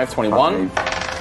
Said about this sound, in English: So you maximise the dice, so it'd be 16, and then you roll 2d8 again. 2d8, okay, that's these suckers, isn't it?